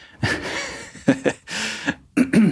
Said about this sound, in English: I'm gonna leave in that cough too.